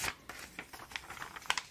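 Pages of a travel magazine being flipped: a quiet run of soft, crisp papery rustles and crinkles, several brushing swishes in quick succession with no voice present.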